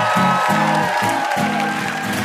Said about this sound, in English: One last round of applause for our VIPs, Joseph Fink, Jeffrey Craner, and Cecil Baldwin.